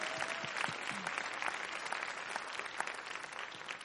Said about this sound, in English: I think I'm going to clap about that.